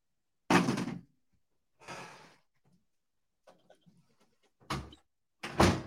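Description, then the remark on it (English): A bedroom door bangs shut, then swings with a softer thud, followed by faint latch rattles and two more solid slams in quick succession near the end; no one speaks. “That was just the bedroom door.”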